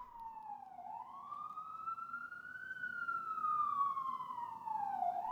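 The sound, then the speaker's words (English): A wailing emergency siren in New York City rises and falls slowly in pitch, steady and fairly loud, sweeping up then gradually down over a low rumble of street traffic. “Ooh, sirens. It's New York City.”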